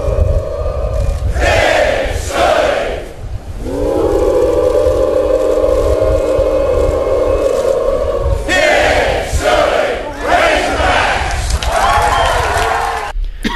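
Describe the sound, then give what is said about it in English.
A large crowd roars out the University of Arkansas Razorbacks hog call, "Woo pig suey," a long sustained rising "woo" held for several seconds between shorter rhythmic shouted bursts, loud and echoing with steady crowd noise beneath. “there is a video of him leading a crowd in the Razorbacks chant”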